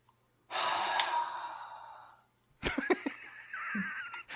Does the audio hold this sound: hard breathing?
yes